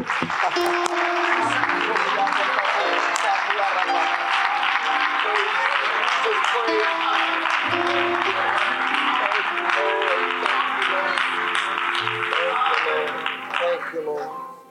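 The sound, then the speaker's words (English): An audience at a church service applauds for the Lord and Savior, Jesus Christ, in a sustained, dense wave of clapping over steady organ or keyboard chords, holding loud for about fourteen seconds before starting to fade at the end. “And now together, let's give a great hand of applause to the Lord and Savior, Jesus Christ.”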